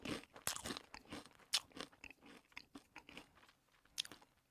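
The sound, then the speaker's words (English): Crisp crunching of a ketchup-flavoured potato chip being chewed by a man, a rapid series of sharp bites and crackles over a few seconds with no talking. “Put it in your mouth. It's in his mouth. He's chewing it.”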